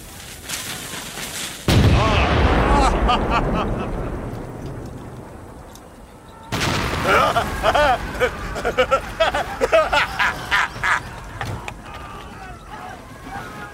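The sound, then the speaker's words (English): A heavy cannon blast booms out and rumbles away, then a second deep boom follows as the shot hits barracks about 2,000 yards away, with crashing, crumbling debris and scattered impacts that gradually settle, loud. “I like these cannons of yours.”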